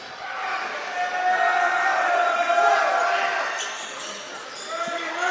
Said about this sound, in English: the crowd clapping for Robinson